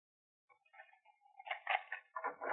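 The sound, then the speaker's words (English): A door being opened: a soft creak and rattle of the latch building to a few louder wooden knocks and scrapes, with no voices. “If you put your foot in the door like that”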